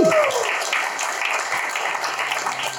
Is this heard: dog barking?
no